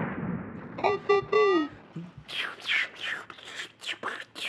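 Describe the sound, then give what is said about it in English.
A voice imitates gunfire with its mouth: three short, pitched vocal blasts, then a rapid string of about seven breathy, hissing bursts, moderately loud, with no other talking. “I'm making these sounds with my mouth to make sure that they work better, but it's not doing anything.”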